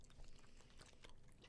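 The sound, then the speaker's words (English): Soft chewing of shredded bubble gum (Big League Chew), with wet, sticky mouth sounds and small clicks repeating steadily for a moment and no talking. “Why is the Big League Chew so soft?”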